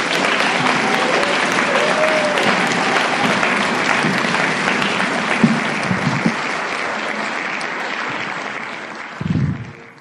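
A room full of people claps steadily for several seconds, a dense, sustained applause that stays loud before tapering off near the end, with a brief low thump as it fades.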